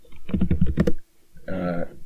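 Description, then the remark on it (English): A quick burst of about eight clicky keystrokes, typing on an old laptop keyboard, fairly loud, followed by a short pause and a brief humming, voice-like tone. “What switches you got on that keyboard there”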